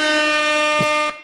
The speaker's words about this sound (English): Well, it also has an air horn.